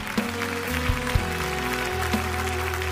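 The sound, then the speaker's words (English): A crowd claps and cheers for people who are still coming, in a steady, dense wash of noise that holds for the whole stretch, with a low droning tone running underneath and a few sharper thumps. “You keep clapping.”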